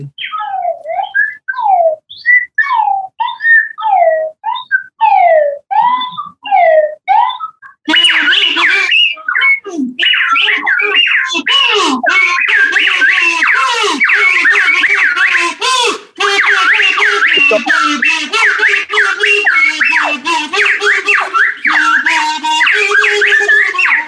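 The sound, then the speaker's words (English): A swanee whistle slides up and down in quick pitch swoops, then a buzzy blue kazoo joins in playing a lively tune over it, loud, with no talking. “I'd love to hear you doing a little accompaniment there with the Swanee whistle with the blue rasping kazoo.”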